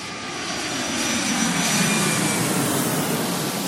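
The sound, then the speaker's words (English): A steady, loud roar of a jet airplane engine, broad and continuous, swelling slightly and then holding level for a few seconds with no voices. “Okay, it is now time for an airport airplane.”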